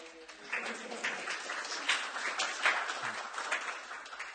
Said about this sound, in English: I was going to say hold your applause, but no, go for it. Do it one more time.